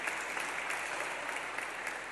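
Steady audience applause, a dense, even wash of many hands clapping at once that holds at a constant level throughout, with no voices over it.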